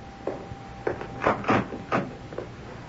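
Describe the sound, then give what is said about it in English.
A front door opens with a quick series of clunks and rattles, likely the latch and handle, over a faint steady hum with no one talking. “You want me to open the door, Mom?”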